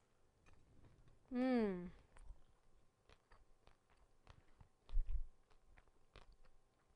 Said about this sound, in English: And now put another layer on, and there you have it, your starry fig bar. Let me take a bite.